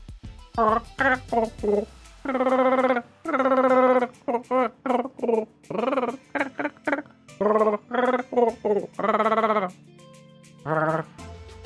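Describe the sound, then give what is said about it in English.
A voice imitates Wookiee growls while redoing a news article in Wookiee: a long run of loud, warbling, bleat-like howls in short bursts and a few longer drawn-out cries, with brief pauses between them. “All right, so now, just for all you people that do speak Wookiee, I am going to redo that news article in Wookiee so you can understand in your native language.”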